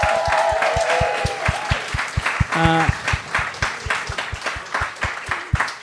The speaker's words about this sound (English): We've come to the end of the fantastic night, guys. A huge round of applause for all the guests, guys.